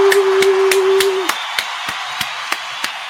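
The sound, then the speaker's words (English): An applause sound effect of slow, evenly spaced sharp claps, about ten in a row, over a steady low hum that cuts out partway through. “Round of applause for TQ.”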